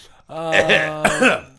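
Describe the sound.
A person imitates a whooping cough: two loud, drawn-out voiced whoops in quick succession, each rising and falling in pitch.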